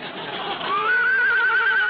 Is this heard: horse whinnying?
yes